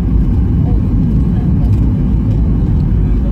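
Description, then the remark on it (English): A steady, loud low-pitched roar of an airplane landing in Vegas after a flight from Heathrow, its engine rumble filling the whole stretch without a break and with no voices over it. “We'll film our plane landing.”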